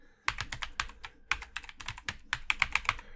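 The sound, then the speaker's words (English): Rapid typing of a password on a computer keyboard: a quick, uneven run of crisp, clacky keystrokes in short bursts, with a few slightly louder taps near the end. No one speaks. “Enter my password.”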